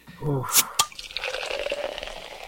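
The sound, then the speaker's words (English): A bottle of a non-carbonated drink is opened with two quick, sharp clicks, then liquid pours steadily for a couple of seconds. A short vocal sound comes just before the opening. “That's when I was popping the top on this.”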